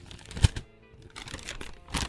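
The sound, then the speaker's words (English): Paper rustles and crinkles as a sheet with a written question on it is unfolded and handled, with a sharp crackle near the start and several softer papery bursts after, no voices. “Okay, paper fetishists, gather around.”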